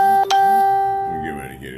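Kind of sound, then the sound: signal or alarm, notification chime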